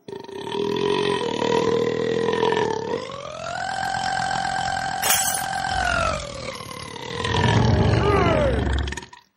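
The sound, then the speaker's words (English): A single very long, drawn-out burp, an attempt at a longest-burp record, rumbles loudly and continuously for several seconds, its pitch wavering and rising before trailing off, with no talking over it. “Well, right now I'm going to go for another restaurant record. Longest burp.”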